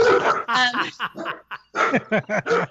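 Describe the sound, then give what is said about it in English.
A dog barks after a knock on wood, a rapid series of sharp barks, about eight or nine in quick succession with a brief pause midway. “Oh, sorry, I just freaked my dog out.”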